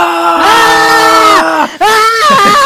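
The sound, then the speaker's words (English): A person loudly imitates a Dragon Ball Z style anime battle scream: a long, strained, sustained yell, breaking off briefly before a second powered-up scream rises again. “But just Dragon Ball Z, again, as you said, it's just a cool universe just to see people just scream off the top of their lungs.”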